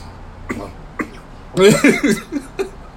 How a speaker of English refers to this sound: I haven't heard him cough in I don't know how long.